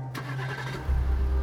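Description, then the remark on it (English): A car engine cranks briefly with a whirring starter, then catches and settles into a loud, low rumbling idle. No voices. “At 7:35, he was in his car heading west on the Foothill Freeway.”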